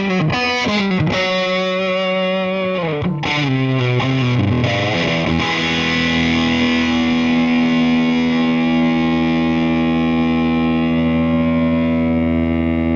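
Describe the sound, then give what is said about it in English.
Distorted electric guitar played through a small Marshall tube combo amp: a few quick chord stabs and bends, then a thick, saturated chord left ringing and sustaining loudly with no voices. “Which Small Marshall Tube Combo is the Best?”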